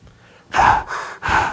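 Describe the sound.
Someone imitates an NFL player on the sideline huffing pure oxygen from a mask: three quick, forceful breaths in close succession, loud, each a breathy rush of air with no talking.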